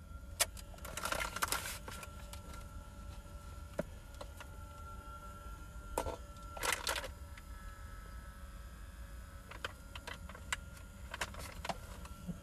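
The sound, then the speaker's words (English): A small electric fan whirs steadily, a low motor hum with a faint whine, broken by a few short bursts of clicking and rattling. No one speaks. “I hope y'all can't hear this fan. I need to put this fan on.”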